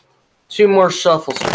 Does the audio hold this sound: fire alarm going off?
no